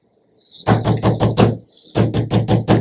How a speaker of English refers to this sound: She hadn't seen or heard from the old couple in a long time and she was worried. She knocked on their door. No answer.